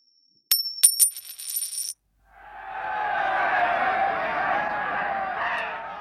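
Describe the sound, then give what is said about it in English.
Two penny coins, tossed in a game of two-up on Anzac Day, land with sharp metallic clinks, bouncing and ringing briefly before settling, followed by the steady murmur of a crowd. “Two-up, of course, is a gambling game that involves tossing two penny coins, ideally ones from 1915, in the air and betting on how they'll land.”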